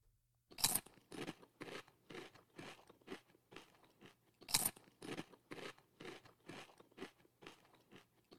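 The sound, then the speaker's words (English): Loud crunching of chips on a hot dog: two sharp, crackly bites followed by a steady rhythm of quieter chewing crunches, with no talking. “Those are the chips on top of the hot dog we were talking about earlier.”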